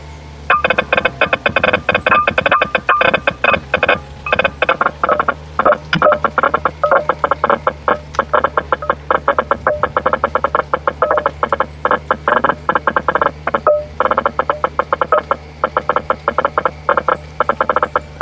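Tree signals rendered as music: a loud, steady stream of rapid, stuttering clicks and croak-like pulses over a constant low hum, continuing without pause and with no voices.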